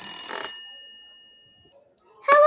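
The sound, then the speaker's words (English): A telephone bell rings once in a short, bright burst as a call is placed to a grandmother, its tone hanging and fading into silence before another loud ring cuts in near the end. “So let's get his grandma on the phone.”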